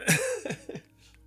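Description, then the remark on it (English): A person clears their throat in a few quick, rough bursts, a short raspy sequence that fades into near silence. “I have, sorry, I'm like clearing my throat.”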